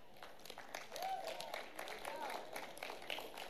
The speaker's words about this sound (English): Women are clapping. It's beautiful, beautiful.